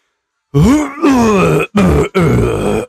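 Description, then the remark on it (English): Someone clears their throat in three or four loud, voiced, grunting bursts, each rough and low with a gliding pitch, separated by short pauses, with no speech around them. “Anyway, clearing my throat. Let me clear my throat.”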